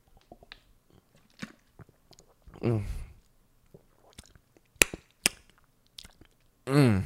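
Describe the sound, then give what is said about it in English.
Quiet sips of water: two short wet slurps a few seconds apart, with soft mouth clicks and faint lip smacks in between. “I'm taking a sip of my water.”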